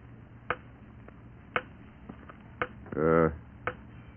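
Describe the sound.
A grandfather clock ticks loudly, its sharp clicks falling in a slow, steady beat about once a second, with fainter ticks between and a brief voiced sound near the end.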